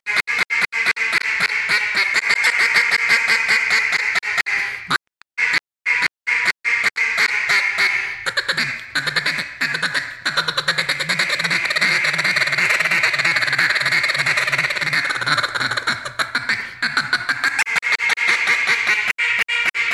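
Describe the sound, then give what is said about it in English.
A double reed duck call blown in long runs of raspy, rapid quacks, loud and buzzy throughout, with a brief choppy pause of short bursts partway before the steady calling resumes. “Don't you find that double reed is just so user-friendly?”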